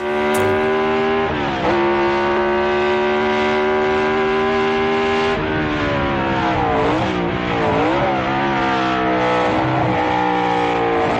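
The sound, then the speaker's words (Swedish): A loud V8 racing engine revs continuously for about eleven seconds, its rich, buzzing tone holding steady before the pitch dips and surges several times near the end. No one speaks. “Vad var det för motorer då? Ja, det var väl V8 på den vägen.”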